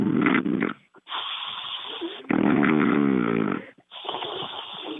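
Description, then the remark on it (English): A radio caller imitates snoring with their voice on air, producing loud, rough rasping snores in a few long drawn-out bursts separated by brief pauses. “he'd like you to snore. Can you pretend to snore?”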